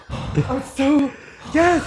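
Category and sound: vocal imitation, imitated heavy breathing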